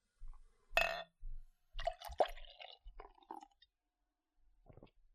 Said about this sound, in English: This beer is a dark sour ale. It has 8.5% ABV, so it definitely packs a punch, and it has 17 IBUs. So I'm going to pour a little bit of the beer here for myself.